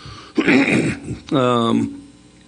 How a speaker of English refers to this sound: And then I think that, hang on, I got a cough.